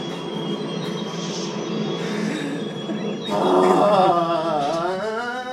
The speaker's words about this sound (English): Phil is going down a mine cart with rocks falling from the sky down from him. We're sorry if you're listening through your headphones to this.